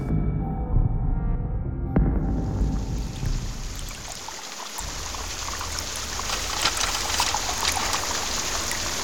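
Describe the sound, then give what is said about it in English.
Steady trickling and splashing water in a waterfall chamber fills the space, a continuous wet hiss with scattered droplet sounds, after a brief low rumble at the start. No voices. “It is the 8th day of Sakaris, and it will be 11 a.m. by the time the group leaves the waterfall chamber.”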